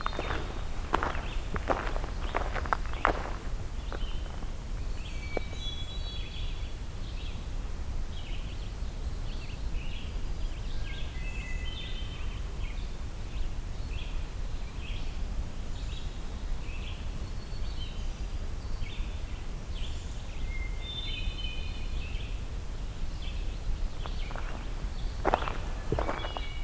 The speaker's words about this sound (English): Hermit thrush again.